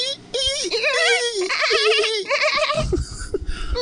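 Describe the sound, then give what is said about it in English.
A voice mimics a peacock with loud, high, wavering wails, several drawn-out nasal cries with warbling pitch, ending in a rougher, breathy burst. “There's a lot of there are that's my peacock.”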